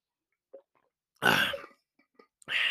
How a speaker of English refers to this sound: Man, I apologize. I got the case of the coughs this morning.